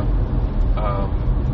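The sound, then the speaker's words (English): A car rumbles past on a road, and a single short horn toot rings out partway through over the steady, fairly loud engine and road noise. “It's another car like mine.”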